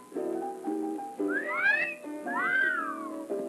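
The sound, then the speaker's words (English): An appreciative two-part whistle, the first note sliding upward and the second gliding down, fairly loud over a steady low musical drone. “The hot dogs at our concession stand do rate an appreciative whistle.”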